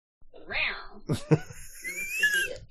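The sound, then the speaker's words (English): A cat meows, followed by a couple of soft bumps and then a higher, drawn-out mewing cry, with no one talking. “Hey, someone's behind you. Or it's a cat.”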